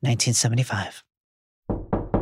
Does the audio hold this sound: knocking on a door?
yes